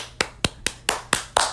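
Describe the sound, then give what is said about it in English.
Six sharp hand claps in a steady, even rhythm as a round of applause for a book, like one person applauding on their own; each clap is crisp and fairly loud, with no talking. “Yeah, let's give a round of applause to this book.”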